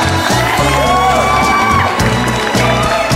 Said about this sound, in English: Ladies and gentlemen, give your applause, put your hands together for the one and only